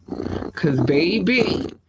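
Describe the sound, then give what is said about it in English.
Someone imitates a cat's purr, starting with a low, rough rumble and sliding into a voiced, trilling hum. The sound is fairly loud, lasting about two seconds with no words. “Because baby, if a girl is purring, she's a happy, happy girl.”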